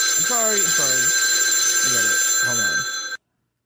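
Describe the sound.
A telephone, the show's celebrity 'Death Phone', rings steadily and loudly for about three seconds in a continuous electronic trill. Voices talk briefly underneath before it cuts off abruptly.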